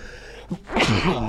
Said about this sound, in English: Oh, I have to sneeze here. God bless you.